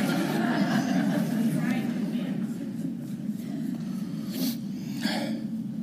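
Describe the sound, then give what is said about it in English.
A sudden sharp, loud sneeze bursts out near the end, over a steady background of murmuring voices. “God bless you”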